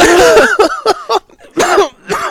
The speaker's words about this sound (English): Oh, that's not Corona. That's just me laughing and coughing.